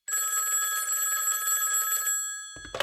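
A single long electronic telephone ring tone, bright and steady, sounds for about two seconds as a call is placed, then cuts off into a short clatter as the line is picked up.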